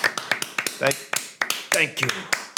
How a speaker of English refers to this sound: Thank you. Oh, you doing your loud clap again that everyone hates?